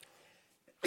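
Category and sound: human body sound, sneeze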